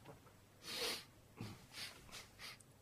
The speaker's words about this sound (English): Right, okay, so I've got some water in my hand, yeah? Right, and now sniff it. Right up your nose.